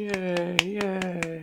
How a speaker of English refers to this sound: Yes, I think that deserves a clap. That deserves a clap.